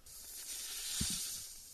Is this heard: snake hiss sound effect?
yes